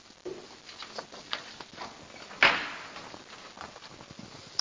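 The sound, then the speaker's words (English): Soft scattered footsteps and shuffling, then a single sharp thump as a door swings shut, its brief echo fading before more quiet movement. No one speaks. “Should you maybe close that door”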